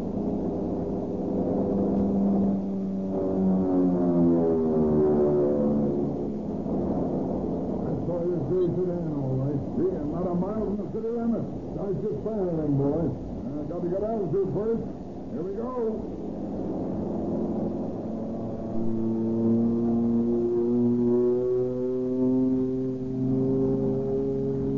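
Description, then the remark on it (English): An airplane searching over the country north of Tucson dives down toward a car on the ground, its loud, steady roar bending in pitch, swooping down, climbing and dropping again over about twenty-five seconds, continuous throughout. “All the way down. Like a car down there. See? Well, that's home for Palo Verde. Yeah, I see it. Hold on, we're going down.”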